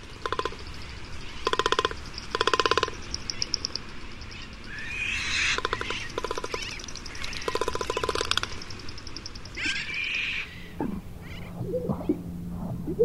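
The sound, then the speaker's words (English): Bursts of rapid, dry drumming rattles from a magnificent frigatebird's inflated throat sac, beaten and rattled with its long beak, repeated in short pulsing trains, with some softer whistly calls and a low hum near the end. “Inflated throat sacs beaten and rattled with a long beak. Magnificent frigate bird.”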